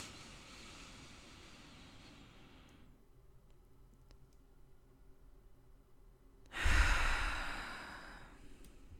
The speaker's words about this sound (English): So let's take a breath together. And remember, it doesn't have to be as complicated as you're breathing out. Just take some breaths in and out, really deep breaths.